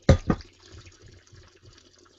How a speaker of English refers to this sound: I call it mouth aeration, where basically you take the wine and then you sort of slurp air through